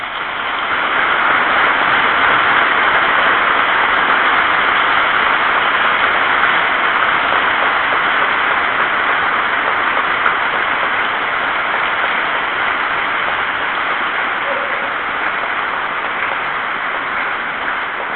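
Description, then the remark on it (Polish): An audience applauds a priest's talk steadily for about eighteen seconds, a dense, even wash of many hands clapping at a constant loud level, with no speech over it. “Myślę, że te oklaski świadczą o tym, że słowo, które tutaj wypowiedział ksiądz Piotr, dotarło do serc wszystkich”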